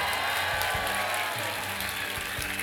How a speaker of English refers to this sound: Give them a big old clap.